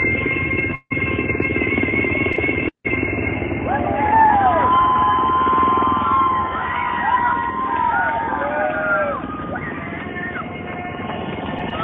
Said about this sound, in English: So it's pretty cool. You know, he was the one actually driving the helicopter in the front.